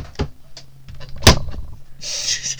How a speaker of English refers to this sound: I just slammed my computer shut. Nice. Nice on. Or nice off, I guess.